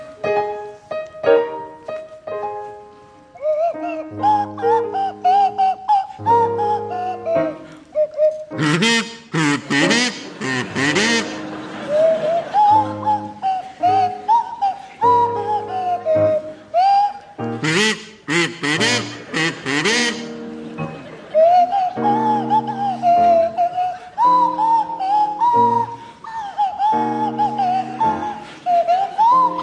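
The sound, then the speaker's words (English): A buzzy kazoo and a sliding swanee whistle play a slow tune together for about half a minute, the whistle's gliding pitches weaving over the kazoo's nasal drone, loud with no talking. “provide us with the rendition of Titwillow, featuring Jeremy Hardy on the kazoo and Tim Brooke Taylor at the Swanee Whistle”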